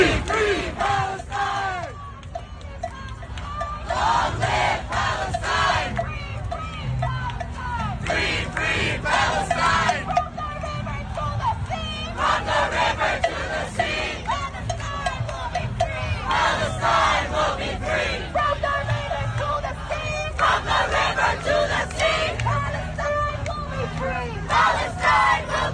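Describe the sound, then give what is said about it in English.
A large pro-Palestine protest crowd in New York City chants "From the river to the sea, Palestine shall be free" in unison, loud and sustained for the whole stretch, the massed voices rising in rhythmic phrases with short breaks between repetitions. “Also, we have this song that is sung. This one is from New York City.”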